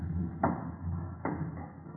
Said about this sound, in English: Ah, this confounded wooden stairway, it creaks, Holmes.